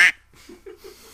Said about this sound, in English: Any more ducks before we get off this game? No, I'm pretty ducking good.